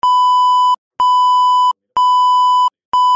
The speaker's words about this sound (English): Wait, I'll beep this part out. You did not hear anything.